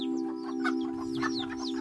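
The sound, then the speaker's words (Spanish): Hens and chicks cluck and peep in short, overlapping bursts as they run between the road and the hillside in Puerto Rico, over a steady low electrical hum with no one talking. “Me recuerdo de momentos en el exterior, las gallinas con sus pollitos corriendo entre la carretera y el monte en Boriquén.”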